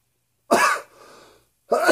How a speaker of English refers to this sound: Cough joke.